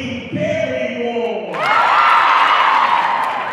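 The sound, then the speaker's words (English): A gym crowd at a volleyball match stomps and erupts into a loud, sustained roar of cheering after a brief tonal, voice-like sound, the dense noise filling the space and holding steady to the end. “The energy in the gym is electric. Everyone is stomping and cheering.”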